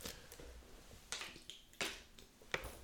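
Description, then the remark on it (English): Someone drinking water: a handful of soft, wet gulping and swallowing clicks spaced irregularly over a few seconds, fairly quiet, with no talking. “So yeah, sorry, I was just drinking some water.”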